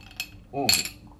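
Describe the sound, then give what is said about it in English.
Metal ice cubes clink sharply against an empty glass, a quick tap followed by a brighter rattle of clinks, with a short voiced murmur overlapping the second burst. “When these metal ice cubes hit my teeth, yeah, love that feeling.”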